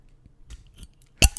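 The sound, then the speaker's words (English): Soft metallic handling taps, then one sharp crack as a drink can's tab pops open, followed by a brief fizzing hiss. No one speaks. “do you want to crank yours? We'll give them a little ASMR action.”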